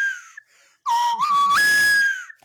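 A slide whistle plays a short, loud phrase: a brief high note, a low swooping tone that climbs, then a sudden jump to a long high note that slowly sags.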